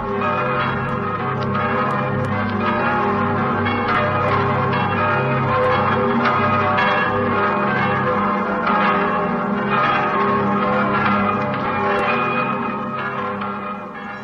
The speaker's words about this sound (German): Es läuten die Glocken des Kaiserdomes zu Aachen.